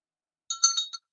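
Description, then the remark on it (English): A small bell, used as an object of awareness in a meditation teaching, rings with a few quick, bright metallic strikes, its clear high tones shimmering briefly before cutting off, with silence before and after. “Existence again, it awares of the sounds of the bell.”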